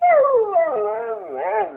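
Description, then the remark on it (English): A dog lets out a short, wavering howl, the pitch dipping and rising in a whimpering, mournful way for under two seconds, with no talking over it. “What do you know? You're a dog.”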